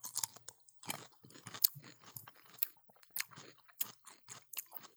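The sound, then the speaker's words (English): Wet, crisp crunching and chewing of a Polish pickle eaten for breakfast at 9:15 in the morning, with irregular bursts of crackly bites and squelchy mouth sounds repeating over several seconds, no talking. “Pickles for breakfast. Cheers, here we go.”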